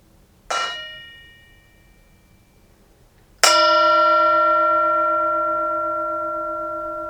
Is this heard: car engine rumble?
no